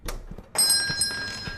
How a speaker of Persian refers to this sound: زنگوله در جیرینگ جیرینگ صدا داد و دخترک در حالی که آب نباتش را باز می کرد از مغازه بیرون رفت.